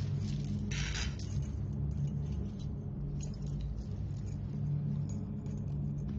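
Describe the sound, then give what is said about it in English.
A brief metallic jingle of car keys being handed over near the start, short, over a steady low rumble that continues throughout; nobody speaks. “Give me your keys.”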